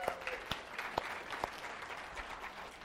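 An audience applauds steadily for the minister's wife, a dense wash of many hands clapping at moderate volume, with a few sharper, louder claps standing out near the start.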